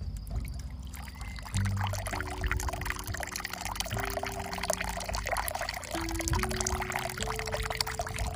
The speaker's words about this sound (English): I love the sound of my waterfall because it bleeds right over on top of my little ceramic doll that I have.